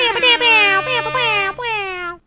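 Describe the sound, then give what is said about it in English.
A loud, brassy air horn blares in four quick, connected blasts, each bright, buzzing tone sliding slightly downward in pitch before the sound cuts off abruptly. “That air horn sound gets better every time you play it.”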